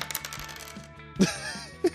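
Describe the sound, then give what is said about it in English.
Dice clatter across a hard table surface in a quick series of sharp clicks and rattles, followed by a couple of louder knocks as they bounce and settle. No one speaks. “Go ahead and give me a roll to fling snow at them.”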